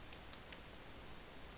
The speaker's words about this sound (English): Stop clicking the pen. Oh, that's the another one, is it? Sorry.